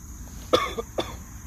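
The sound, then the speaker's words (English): Two harsh, raspy coughs about half a second apart from a person after smoking a dab, the first stronger than the second, over a low background hum. “Been coughing like a bitch.”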